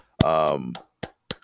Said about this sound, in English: I'm clapping it up for real because, to be honest with you, I mean, it was a surprise to me